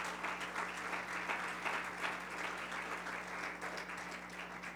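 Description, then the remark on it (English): An audience claps hands to the Lord after a prayer in sustained, dense applause, a steady wash of many overlapping claps at even loudness with no voices standing out, plus a low steady hum underneath. “If you would clap your hands one more time to the Lord.”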